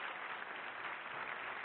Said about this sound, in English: And may I just invite one more round of applause for Robert Rosenkranz for making this possible.